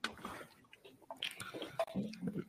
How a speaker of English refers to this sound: For that, I'm gonna take a sip for you. Mm-hmm. Not bad, man. I don't think I never had this, man.